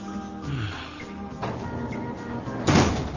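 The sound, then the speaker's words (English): A door is pushed shut, ending in a single solid thud near the end, preceded by a softer knock and some shuffling over a steady low room hum. “It's drafty with the door open.”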